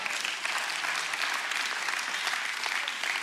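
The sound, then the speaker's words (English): An audience claps steadily during a sermon, a dense, even patter of many hands that holds at a constant level for about three seconds with no voices over it. “Thank all 17 of y'all for that rousing applause and celebration.”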